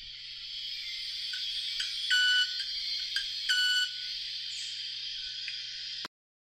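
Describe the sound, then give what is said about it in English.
A club-winged manakin's wing sound: two short, bright ringing bursts stand out over a steady high-pitched buzz of forest background, with no voices, ending abruptly. “And the clubbed-winged manakin.”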